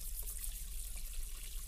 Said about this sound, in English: The running water means I can't hear to talk to him.